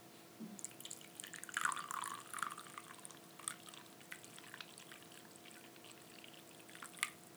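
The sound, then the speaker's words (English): A hot, pinkish-orange drink is poured into a cup, a quiet bubbling, trickling stream with a few drips, and no talking. “I feel like I nailed the ASMR pour.”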